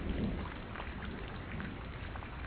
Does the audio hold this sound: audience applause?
no